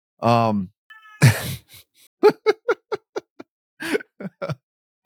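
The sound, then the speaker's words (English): A person imitates a cat with a single drawn-out meow. A breathy burst and a quick series of short, choppy laugh-like pulses follow. “Meow.”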